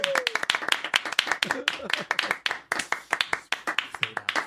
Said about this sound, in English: I can clap longer than you. You trying to clap longer than me?